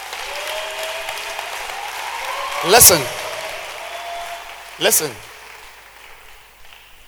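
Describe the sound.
An audience claps their hands in a steady, continuous wash of applause, with two sharper, louder bursts standing out partway through. A voice speaks briefly over it.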